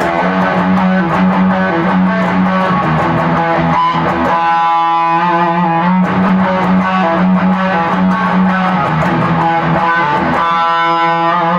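An overdriven electric guitar plays a driving, chugging riff with repeated rhythmic strums and sustained chord tones, loud and continuous with no voices over it.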